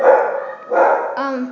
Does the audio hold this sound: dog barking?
yes